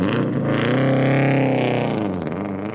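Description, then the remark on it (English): Steve's flashy new truck, a big red one with a black top, its engine droning steadily and loudly, its revving pitch rising slightly and then easing off as it drives, with no voices present. “What Steve actually did with his money was buy himself a flashy new truck.”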